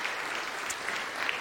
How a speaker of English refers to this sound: High schoolers, give them a big round of applause.